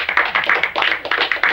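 A short burst of applause: dense, overlapping hand claps forming a steady crackling patter at even loudness, with no voices.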